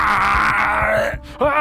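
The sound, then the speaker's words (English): A person voices a harsh, strained monster screech, loud, holding a rough growling tone for over a second before briefly breaking off and rising again, imitating a sudden screech from a maintenance tunnel. “And as you pass one of these maintenance tunnels, there's suddenly this screech.”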